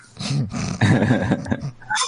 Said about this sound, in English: I just heard this cat.